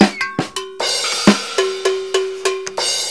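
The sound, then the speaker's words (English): A short, lively drum fill on a full drum kit with clanging cowbell: about nine sharp hits in a quick, uneven rhythm, the bright metallic cowbell ringing over punchy drum and cymbal strikes. No voices. “Wow, you brought the full kit today. Not just the snare and the cymbal.”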